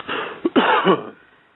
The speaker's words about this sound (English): Cough, brother, out of your stomach to get it started.